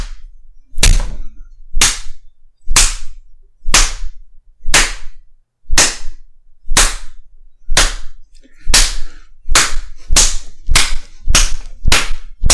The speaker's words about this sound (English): Gotta slap that average little face around just for hurting my hand.